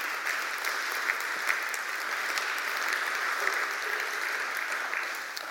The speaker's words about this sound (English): Has this been good? Amen. Give the Lord a clap offering tonight.